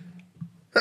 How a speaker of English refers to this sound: Oh dear, bless you.